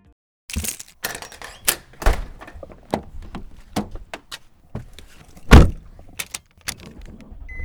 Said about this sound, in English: It is the actual sounds of me grabbing my keys off the rack and opening the house door, and then of course getting in my car and starting it up.